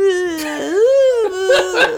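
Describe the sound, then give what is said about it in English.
Two hosts mimic the howl of a dying dog, a sustained, wavering wail that dips and rises in pitch for about two seconds, loud, with a couple of breathy bursts near the end. “we sound like a dying dog every time.”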